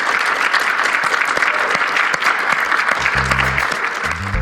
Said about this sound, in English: So can we just get a round of applause, please, for our panelists?